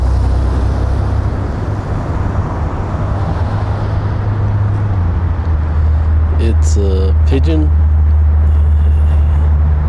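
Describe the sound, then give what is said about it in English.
Steady, loud roar of highway traffic rumbles without a break, with a deep low hum underneath, while a person speaks briefly over the noise. Recorded on Valley Road, just before the underpass tunnel under the highway, on Monday, December 29, 2014. “It's Valley Road. Just before the underpass tunnel over under the highway.”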